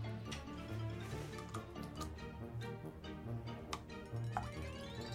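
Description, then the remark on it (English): Liquid is poured steadily into a cup during a turn-taking drinking game, trickling with small ticking splashes, its pitch rising as the vessel fills. Quiet, with no talking. “Oh, dude, nice pouring.”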